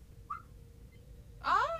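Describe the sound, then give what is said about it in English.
A brief, faint whistled chirp, then after a pause a louder burst of human whistling with quick sliding pitch that lingers for about half a second, with no talking. “Sorry about the whistle, guys. I don't know how that came through the mic, but...”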